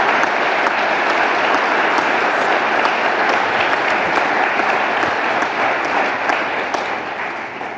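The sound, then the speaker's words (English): Steady, dense applause from an audience for their pastors, a sustained wash of many hands clapping at full volume that begins to taper off in the last couple of seconds. “And today, I think we should applaud that they just led with incredible transparency.”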